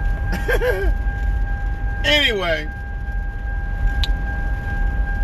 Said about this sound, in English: I do have my seatbelt on. That is not me. I got water in my passenger seat and the alarm's going off.